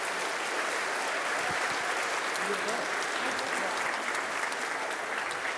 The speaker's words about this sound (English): So thanks, guys, for coming up. Let's give them a round of applause, and I'll finish the sermon.